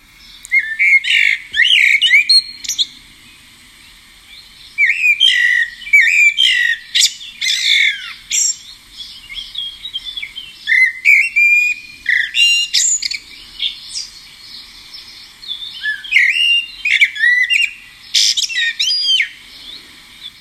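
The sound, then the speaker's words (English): A blackbird sings in bursts of fluting phrases, each trailing off into quick, scratchy, squeaky clipped notes, repeated several times with short pauses, clear with no voices. “There's a number of very staccato, short, clipped, scratchy, squeaky notes at the end.”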